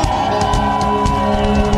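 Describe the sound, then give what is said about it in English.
An audience's mighty shout, a dense, sustained roar of many voices at full volume that holds steady without a break for its whole length. “Give him a mighty shout.”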